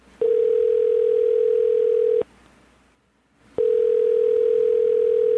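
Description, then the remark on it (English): A telephone line tone while a live phone call is placed: two loud, steady electronic tones, each about two seconds long, separated by a brief silent pause, with no voices. “So actually I was thinking, since we have the ability to make these live phone calls and stuff now, that we would get her on the phone”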